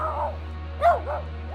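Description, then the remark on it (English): A dog gives a short run of deep, gruff barks, about three or four in quick succession, the middle one loudest, over a steady low hum with no talking. “Soda Pop lowers his head, trying his best to look intimidating as he blocks its path to the humans. Then he lets out his deepest, most intimidating bark.”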